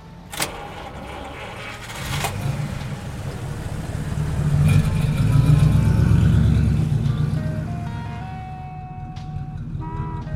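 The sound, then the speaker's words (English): A sharp click, then a car engine starts and revs up as the car sets off to take passengers to Bellevue Hospital. Its low rumble swells as the vehicle pulls away, then gradually eases off. No one speaks. “As long as we're clear that I am not your chauffeur and that this is still my car.”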